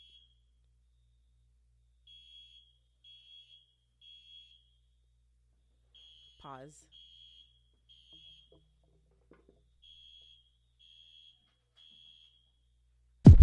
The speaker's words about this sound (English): Pause. Okay, so actually, while I go deal with the fire alarm in the freaking podcast video